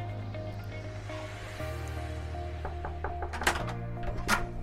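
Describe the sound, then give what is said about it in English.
A few sharp knocks rap on the front door of a home in short bursts over a steady low humming background, with no one speaking. “Anyway, let's knock on the door and see if our man's at home.”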